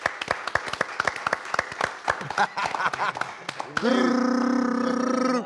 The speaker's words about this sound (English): I need everyone to participate. Everyone in the room, let's give a round of applause.